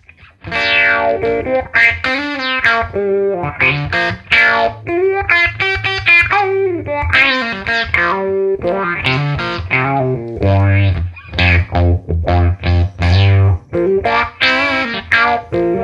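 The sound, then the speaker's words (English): An instrument played loud through a funky effects pedal on its neon setting, the volume turned up, its processed, distorted tone bending and warbling across a quick run of notes, with a low droning undertone swelling in the second half and no talking. “Such a funky pedal.”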